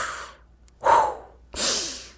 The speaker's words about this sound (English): Whenever you get anxious or angry, try taking deep breaths. Then push out all the anger in your belly. Breathe out. Breathe in.